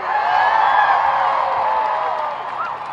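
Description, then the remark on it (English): A dense, sustained roar of many voices cheering and whooping at a strike rally of about 20,000 young people on Wurundjeri country in Australia, steady and loud for the full three seconds with scattered higher shouts rising above the wash. “How massive this crowd is, everyone!”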